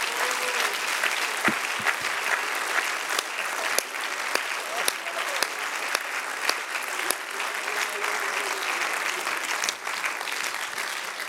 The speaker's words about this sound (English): Clap a little louder. It's for Jesus. It's for Jesus. It's for him.